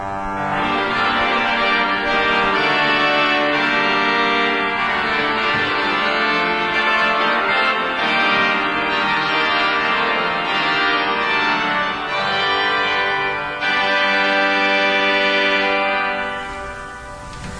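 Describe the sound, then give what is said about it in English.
A loud, sustained chord on the pipe organ at Christ Cathedral with a bright, brassy, harmonic-rich tone holds steadily and shifts slightly partway through. Near the end the note is released, leaving a short reverberant ring in the room. “So you heard that wonderful reverb as I let go of the note, and it rings.”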